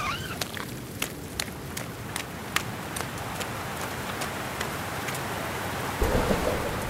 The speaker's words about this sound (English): It's raining. I mean, I knew that, but it's really raining.